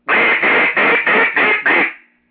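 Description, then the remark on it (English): A duck call blown in six quick, raspy quacks, each loud, running together in a steady descending-energy cadence with no talking over them; the caller growls into the call to make the rasp. “Like if I want to go, wah, wah, wah, wah, I'm exactly what I'm going to say in that duck call.”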